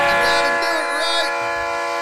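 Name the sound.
train horn sound effect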